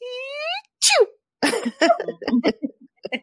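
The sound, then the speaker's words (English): A voice imitates a soft sneeze: a rising, drawn-in 'ah' followed by a quick falling 'choo.' Chatter and light laughter follow right after, moderately loud. “Oh, now that we've covered three different audio versions of the sneeze, this is the level of obsession, by the way.”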